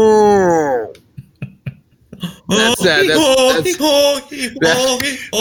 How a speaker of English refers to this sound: And it's, it's like Rick Stevens the cat, but it's just a cow. All moo sounds 24/7. All different types of mooing. We're just mooing, mooing, and screwing on 107.9, the Moo.